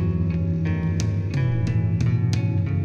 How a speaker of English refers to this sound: Good instrumentals. Yeah, these dudes have a nice sound. I like them. Cool guitar. I like that.